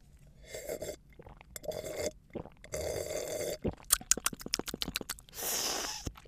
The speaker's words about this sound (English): And on that note, let's taste some Sangiovese, beginning as always with the sniff. Oh, some spicy, exasperated plums there. Wow. But before you can ask me what that meant, I'm going to take a sip.